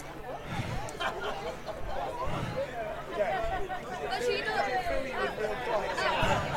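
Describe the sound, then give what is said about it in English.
A continuous murmur of local crowd chatter at a football ground before a Maidstone versus Steyning match, many overlapping voices blending into a steady, moderately loud babble with no single speaker standing out. “people have just messaging saying they can pick up the people around us”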